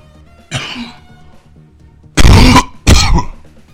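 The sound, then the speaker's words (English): A softer throaty cough, then two loud, harsh coughs in quick succession, very close to the microphone and overloading it, with no talking. “Oh, I'm sorry, I coughed right into the mic there.”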